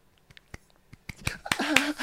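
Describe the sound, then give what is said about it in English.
A handful of sparse, hesitant claps, imitating the scattered polite applause of pub diners at the end of an acoustic cover song, start slowly and become a bit denser, then give way to a brief murmured vocal sound. “Like they forget, like, oh, you stopped, or we better clap.”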